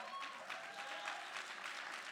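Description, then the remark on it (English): An audience claps their hands, a dense, steady patter of many hands filling the whole stretch at an even, moderate loudness, with no one speaking over it. “Can y'all just clap your hands?”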